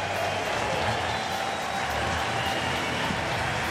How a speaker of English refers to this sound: Well, Tyler Pill is going to be coming out of this game after 5 1/3 innings. Gets some applause from his third baseman, and he should from everybody else in the building.